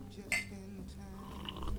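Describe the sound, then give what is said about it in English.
A single bright, ringing clink of glasses touching in a toast, fading quickly into a low murmur of room noise and faint background voices. “Well, here's to nearly a year of JudyCast.”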